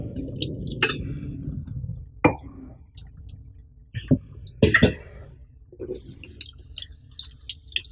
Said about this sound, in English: So this is me cutting a bottle at home.